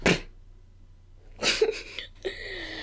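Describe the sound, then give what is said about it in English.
A person imitates a plain, boring sneeze with their voice, a couple of short breathy bursts, the second trailing into a brief tonal vocal sound. “What is your most boring sneeze? True. Yeah. Mine's like...”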